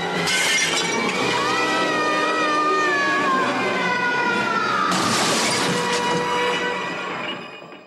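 Loud crash of shattering glass as a woman, pushed over a balcony edge by a gust of wind, falls through the glass into a greenhouse; it keeps grinding and ringing for several seconds, with a second sharp burst partway through, then fades slightly at the end. No voices.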